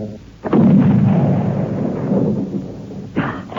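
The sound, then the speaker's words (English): A loud gunshot booms out, its low rumbling roar lingering and slowly fading for a couple of seconds before a second sharp burst cuts in near the end. No one speaks. “Then the thing looked up, and Tom fired.”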